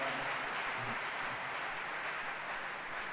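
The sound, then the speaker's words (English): A church audience claps steadily after a testimony, a dense wash of many hands applauding at once with no individual beats standing out, holding at an even level for about three seconds. “Clap your hands”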